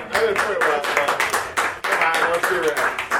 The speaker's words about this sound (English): All right, based on your applause, ladies and gentlemen, starting with Mr. Michael Foody with WWE.